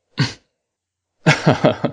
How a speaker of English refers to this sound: I had to sniff real big because I about snorted there.